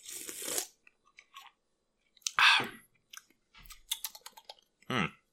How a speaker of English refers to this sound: And speaking of waking up, I have a drink next to me. Good old energy drink. Let me just pop it open and maybe sip it time to time.